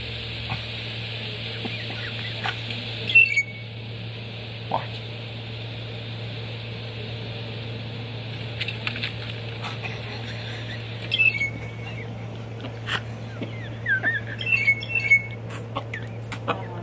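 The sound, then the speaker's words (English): A bird that had struck a person on the head gives short, high chirps and squeaks in a few scattered bursts, some clustered near the end, over a steady low background hum. No one speaks. “Did you see the bird hit my head? One more time. It smacked me in the head. Listen.”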